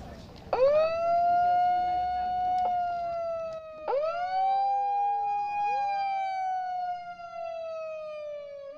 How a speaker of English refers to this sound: … and I will sound the alarm, like the air raid alarm that sounded. Imagine a bomb falling.